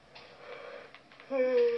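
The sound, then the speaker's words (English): A breathy yawn: a long airy inhale that swells into a loud, drawn-out voiced groan at the end, with no talking. “Hey, you have any other meditations other than yawning, honey?”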